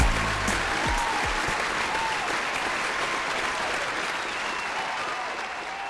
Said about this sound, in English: A round of applause for... Okay. For applause. For breaking your bad dating habits, because you will in 2020.